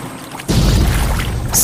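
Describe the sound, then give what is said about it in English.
Water suddenly gushes into a leaking boat after a quiet instant, a loud, steady pouring rush filling the rest of the moment, with a brighter hissing splash near the end. “Water's coming in. I think we have a leak.”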